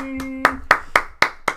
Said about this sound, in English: So if I can get a round of applause from the congregation, it's Turkey Tuesday.